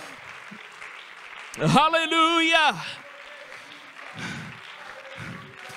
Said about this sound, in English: Oh, come on, why don't you give the hand clap of praise to God right now?